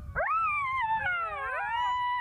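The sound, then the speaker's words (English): A jackal howls in a loud, rising cry that wavers and slides in pitch, with overlapping yips and wails layered over it for a couple of seconds, no talking. “Suddenly, a loud, joyous howl rang through the air.”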